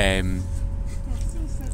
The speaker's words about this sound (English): but we're back, we're on the train. I don't think I've ever done this before, the ambience, I don't know if it's going to work. Hopefully you can hear us.